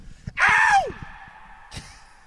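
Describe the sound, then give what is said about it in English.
One loud, shrill scream lasting about half a second, its pitch sliding downward as it ends, then a long ringing echo that slowly fades across the empty Tottenham Hotspur stadium in London. No one speaks. “can I scream just to hear the echo?”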